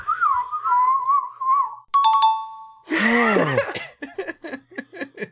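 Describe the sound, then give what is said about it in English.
A wavering, sliding whistle rings out clearly on its own, followed by a bright chime, then a burst of noisy, swooping sounds and a string of short chirpy blasts. “You've made it through the gauntlet of whistles.”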